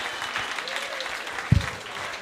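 A crowd applauds steadily, a dense wash of clapping hands filling the room at moderate volume, with a brief louder thump partway through.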